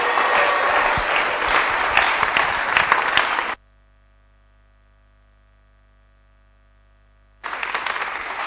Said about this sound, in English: If you are very, very ready, very ready, I want you to stand to your feet and with a hand clap, let's welcome the Bishop Edwin Morgan Ogo. Come on, clap your hands properly.